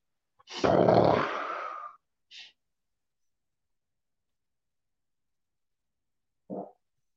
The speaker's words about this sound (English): I just farted. Oh my God.